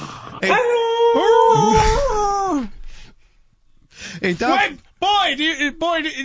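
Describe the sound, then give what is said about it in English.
A person imitates a dog: one long, wavering howl, a short pause, then a string of high, whining whimpers and yelps, fairly loud. “Bring back that dog!”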